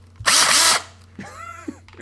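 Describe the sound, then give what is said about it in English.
A power drill whirs loudly in a harsh half-second burst, then spins again more quietly with a whining motor pitch that rises and falls, with no talking. “That's how it feels to be drilled by Steve.”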